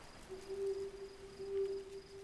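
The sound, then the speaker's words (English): A low, hollow hoot from an owl perched on a mossy green branch in a tall tree near a campsite holds steady for about two seconds, fairly quiet, with a soft hiss and a faint high insect-like trill behind it on a still night. “In a tall tree near Abby and Rudy's campsite, an owl sits on a mossy green branch.”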